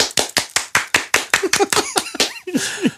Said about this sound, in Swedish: Nej, eftersom att vi är bara två här, så att ska du få en applåd så får du fan applådera själv så att det låter som en applåd.